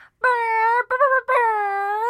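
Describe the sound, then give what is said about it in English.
A voice imitates an air horn as a homemade sound effect, with three loud, buzzing blasts: a long one, a short one, then a longer held one, each a steady mid-pitched tone. “So get ready for more homemade sound effects.”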